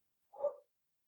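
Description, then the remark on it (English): One short, mid-pitched dog bark, a single sharp woof standing alone with silence before and after and no voices. “Dogs? Dogs. Yes, dogs.”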